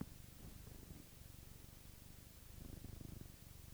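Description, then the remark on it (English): A female cat purrs softly and steadily, a low rhythmic rumble pulsing with each breath over a faint hiss of background noise. “She's not purring super loud, but she is purring.”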